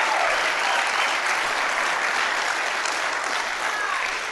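An audience claps steadily for about four seconds, a dense, even wash of applause that holds a constant loudness without breaks.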